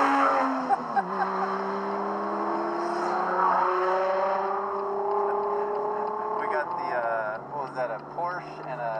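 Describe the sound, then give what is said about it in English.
A Porsche sports car engine roars steadily as it passes the speakers' car on Highway 9 through Big Basin, its pitch dropping as it goes by, with a voice heard briefly toward the end. “So we got a really hot car going to pass us.”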